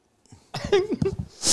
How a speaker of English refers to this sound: Yeah, it's your perfume. It's his perfume. It's Iceman's perfume making me sneeze.